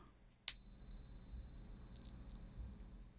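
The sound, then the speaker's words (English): A small bell is struck once with a bright, high ping, then rings out clearly and slowly fades over several seconds, with no voices alongside it. “My bells. Everybody close their eyes.”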